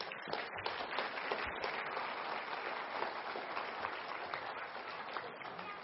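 A crowd applauds steadily for about six seconds, a dense, even wash of many hands clapping at once with no pauses, holding a constant loudness throughout.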